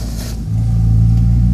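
A white pickup truck engine rumbles loudly, its deep revving growl swelling after a brief moment and holding steady as it rolls past.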